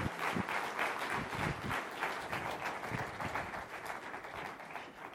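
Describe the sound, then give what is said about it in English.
An audience claps steadily for several seconds as a hand clap of praise to God, a dense, even wash of many hands at a constant strong volume with no voices standing out. “Let's give him just a hand clap of praise while we do a few things.”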